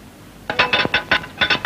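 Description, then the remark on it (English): A glass slides and clinks against a board, as a spirit is asked to move it toward yes, in a quick run of about seven short, bright knocks and scrapes, fairly loud, after a brief quiet moment. “If there is a spirit in the room, please move the glass towards the yes.”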